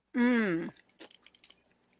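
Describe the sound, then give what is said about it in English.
A brief voiced hum gives way to chewing on a treat with crunchy broken-up toffee on top: several crisp, irregular crackling bites over about a second, fairly quiet. “like a toffee. And it's crunchy.”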